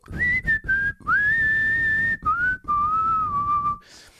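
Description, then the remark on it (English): A person whistles a short song melody, clear, with sustained notes that slide between pitches in a few phrases over about four seconds. No talking. “It had a better whistle to it, too.”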